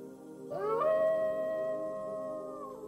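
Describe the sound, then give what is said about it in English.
A single wolf howl swells upward in pitch, then holds a long, steady, mournful note for about two seconds before fading out. It is clear, with no voices. “Being chased by wolves.”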